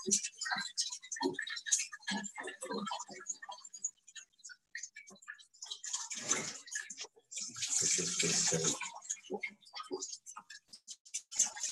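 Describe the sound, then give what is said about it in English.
Water being squeezed out, with irregular drips and trickles patterning and a heavier, steadier splashing gush swelling near the middle before tapering back to scattered drops. “Squeezing the water out of the 25.”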